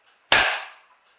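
A single sharp hand clap, made to start off a recording, cracks out of silence, loud and crisp, then trails off in a brief ringing decay. No voices accompany it.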